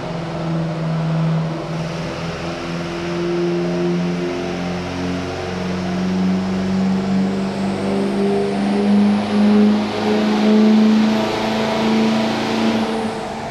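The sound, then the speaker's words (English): Brad Sankey's truck engine roars on a dyno during his second run, holding a loud, steady rev whose deep harmonic drone climbs gradually in pitch for over thirteen seconds, with no voices. “His second run, man, he got right back in that truck and snapped at it as quick as he could.”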